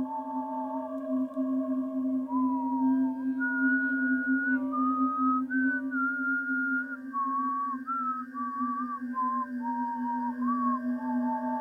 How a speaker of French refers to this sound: Je me doute que vous pensez que j'en faisais peut-être trop, seulement j'avais l'impression qu'elle sifflait juste à côté de mon oreille.